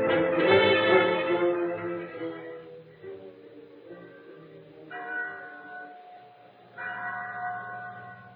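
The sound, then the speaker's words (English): A chapel bell at San Pedro rings out with rich, resonant tones, struck three times at a slow, steady pace, each strike swelling and then lingering as it fades. “There was a bell in the chapel at San Pedro. When it rang, its clear tones carried over the plains for miles in every direction and sounded a message for both Indians and white people.”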